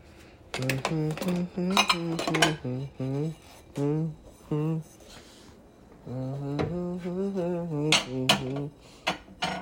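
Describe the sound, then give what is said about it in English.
Dishes and cutlery clink and clatter in quick, irregular bursts as dishes are washed, with a short pause midway, while a voice hums or murmurs underneath. “These dishes just keep piling up, man.”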